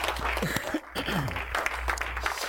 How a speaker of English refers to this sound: Clap your hands unto the Lord just for a moment. Praise God.